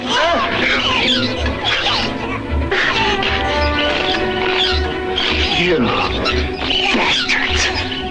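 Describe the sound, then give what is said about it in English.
High, chirpy squeaks and squeals from a creature-like hand in a film burst out repeatedly over a loud, busy backdrop of rumbling noise and thuds, with voice-like sounds mixed in throughout. “But he's like, the hand is chirping and making all kinds of creature sounds.”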